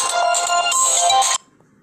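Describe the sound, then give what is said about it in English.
A phone ringtone from an incoming call plays loudly, a bright melodic electronic tune lasting over a second before cutting off abruptly into near silence. “And I just had a phone call in the middle of my recording.”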